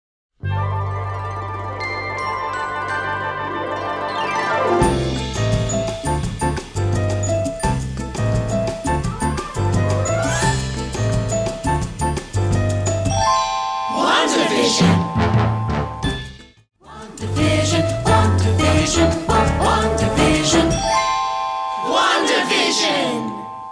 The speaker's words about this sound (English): This theme captures the bebop style that was popular in the 60s. Throughout, we hear riffs played by flutes and chimes.